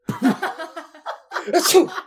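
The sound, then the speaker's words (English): A voice mimics a couple of sneezes, the second a sharp, breathy burst, with laughter mixed in around them. “As he sneezes again, his whole form, like, kind of squats down.”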